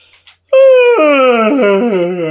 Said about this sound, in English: Big yawn.